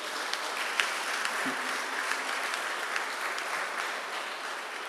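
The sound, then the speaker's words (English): A crowd applauds steadily for several seconds for the women present, a dense wash of many hands clapping at once, moderately loud, with no voices standing out. “Let's clap for the women again.”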